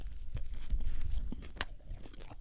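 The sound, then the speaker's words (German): Someone bites into a club sandwich with onions, followed by a few crunchy, wet chewing sounds and soft mouth noises, with no talking. “Das sieht geil aus, da musst du reinbeißen, schön in die Zwiebeln aber rein.”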